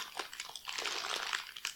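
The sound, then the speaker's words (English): Crinkling of a bag of Diablo chips from Mexico, printed with flames, being handled, a steady stream of crisp, high crackles with brief louder crunches, heard alone without any talking. “If I was given a bag of chips that said devil, it would be a little weird.”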